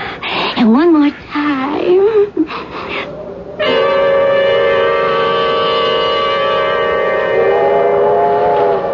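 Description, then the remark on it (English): A loud train whistle blows in one long, steady, sustained blast for several seconds, preceded by a few shorter wavering, rising and falling tones. “train? What train?”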